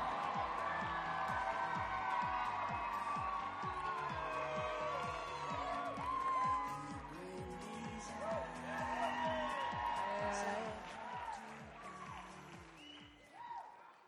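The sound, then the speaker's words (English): A large standing crowd applauds and cheers loudly and continuously for several seconds, with whoops and shouting voices over music with a steady thumping beat, welcoming the first preacher of the night. “So I want all of you to stand to your feet, and I need a wild applause”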